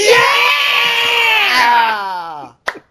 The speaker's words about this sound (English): Oh, but the two girls in the passenger seats cheering.